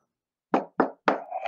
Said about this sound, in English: Oh, I knocked on wood and knocked